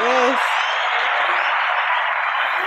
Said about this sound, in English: Round of applause. Yes. For me. Yes.